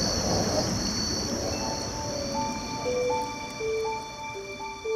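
Outdoor forest ambience on Singapore's rail corridor, a 24-kilometre former railroad converted into a trail through the middle of Singapore, on a rainy Thursday evening: a steady wash of traffic fills the background while mating crickets keep up a constant high-pitched chirring, with a soft gurgle of flowing water underneath. No one speaks.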